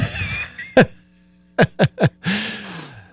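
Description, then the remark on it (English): An exaggerated, showy, proud Barney Fife-style sniff: one sharp inhale, a brief pause, then a quick burst of three loud sniffs, with soft breathy noise before and after. “I sure did give it a Barney Fife sniff, didn't I?”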